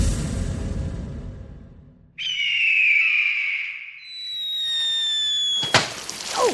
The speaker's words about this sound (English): All right, here it is, the sound of a bald eagle flying and dropping a water balloon on a porcupine. Sound explosion.